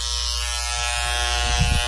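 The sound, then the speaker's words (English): A steady, high-pitched electric shaver buzzes without pause as a man's legs are shaved, its motor whine dipping slightly toward the end as the blades drag across skin, with no voices present. “So he has shaved his legs.”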